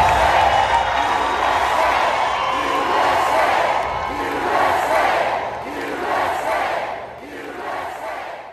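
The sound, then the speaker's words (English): A large crowd cheers and shouts loudly and continuously at the Reawaken America event, a dense roar of voices with rising whoops, swelling and easing slightly as it goes on. “The crowd went crazy.”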